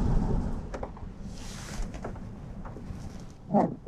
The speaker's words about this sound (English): Sorry about my windshield wiper, but it's Seattle. It's raining.